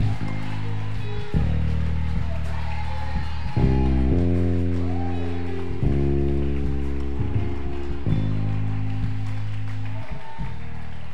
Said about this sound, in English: Come on, put your hands together. Come on, clap your hands. Stamp your feet.